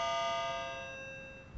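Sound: ringing bells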